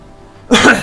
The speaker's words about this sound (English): And I'm a little sick, I think. Plague. Oh no. I've been coughing a little bit.